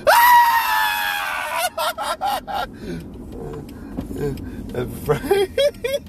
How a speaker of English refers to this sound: … is screaming to a spider. Yep. A spider!